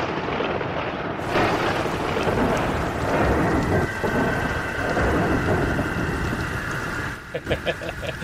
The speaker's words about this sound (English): I guess the storm is coming back in a big way.